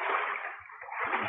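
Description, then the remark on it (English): Continuous watery splashing and sloshing, fairly steady, from someone swimming across a pool, with brief low thumps mixed in and no speech. “Okay, let me see you swim across the pool once.”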